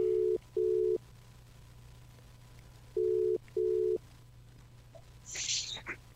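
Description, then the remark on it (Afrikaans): A telephone ringback tone of an outgoing call plays two double-pulse cycles, each a pair of short, clear, steady beeps, followed by a brief burst of noise as the line seems to pick up. “En daar lê die foon.”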